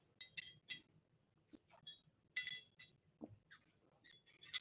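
household object, glass clinking

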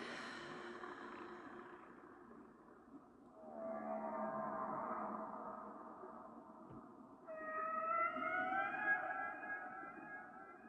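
animal, whale song vocalizations

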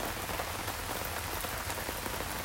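nature, rain falling

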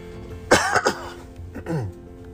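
human body sound, cough

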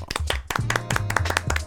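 crowd, round of applause

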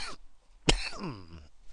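human body sound, man coughing

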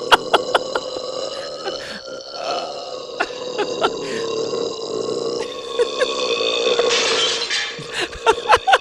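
sound effect, glass shattering

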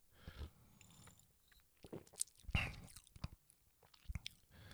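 food or drink, sipping beer

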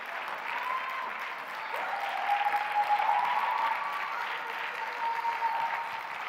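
crowd, audience clapping and applauding

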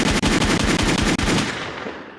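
sound effect, gunshot sound effect

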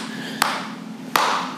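human body sound, hand clap

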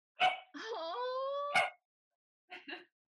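animal, dog whimpering

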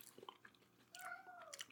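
animal, cat making noise

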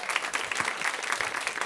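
crowd, audience round of applause

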